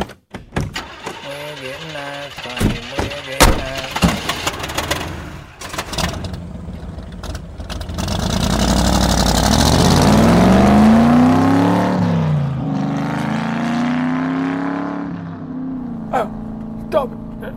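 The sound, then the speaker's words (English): Muffled voices and clunks as everyone gets into the car give way to the car engine starting up, revving with a rising whine, then settling into a steady drone as it drives off. “All right then, everybody in the car.”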